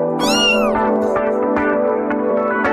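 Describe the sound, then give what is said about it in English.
A person imitates a cat with a loud, drawn-out meow that rises and falls over a steady background of music, on Cork radio station Red FM on a Wednesday morning. “Meow. A nice cat.”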